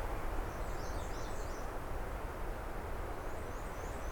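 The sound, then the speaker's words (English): Faint, buzzy scolding chatter from a yellowthroat, in two short high-pitched bursts, the second near the end, half-buried under a steady rushing background noise. No one speaks. “whatever's doing that buzzing, scolding behavior. I think it is yellow throat though.”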